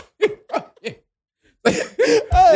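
Three quick, light coughs in a row, a brief pause, then a few louder, harsher hacking coughs.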